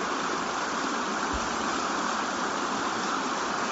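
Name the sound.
flowing creek water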